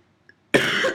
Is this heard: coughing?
yes